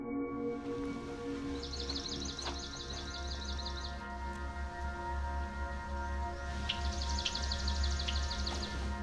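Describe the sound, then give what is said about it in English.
A bird sings a slow, ringing trill of evenly spaced notes, heard twice with a pause between, over steady low background hum and rustle. “Like the swamp sparrow song, it is a slow ringing trill and can sometimes be confused with the songs of the pine warbler or the chipping sparrow.”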